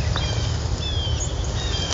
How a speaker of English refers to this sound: I'm literally taking a walk in the sunrise. Maybe you can hear the birds.